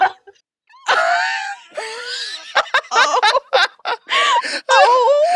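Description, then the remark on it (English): A quick, sharp intake of breath, then a loud, high-pitched shriek from a single voice, breaking into several choppy, laugh-like squeals that rise and fall over a few seconds. “That was made so much better by the inhale you took. I saw shrieking and I was like, I gotta get some breath support for this motherfucker.”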